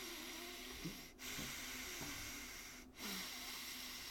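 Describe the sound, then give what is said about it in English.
Steady heavy breathing through the nose: a continuous airy hiss broken by two brief pauses between breaths, fairly quiet, with no talking. “That might have helped cut down on the heavy breathing noises.”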